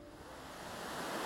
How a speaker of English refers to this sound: It may not look much, but this tiny moorland stream becomes the River Severn. Its actual source is a bog a few kilometres uphill from here on the Plinlimmon Range in Mid Wales.